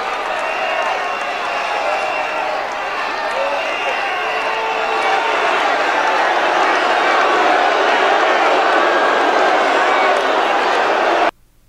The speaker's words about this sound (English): Okay, so Trump then thanks the police. You can hear the protesters whistling in the middle of his tribute to Steve Scalise.